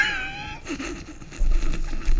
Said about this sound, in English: No. No, it's the fart. Again.